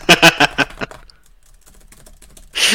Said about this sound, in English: The three Pakistanis are freaking raging right now. I can hear them typing right now.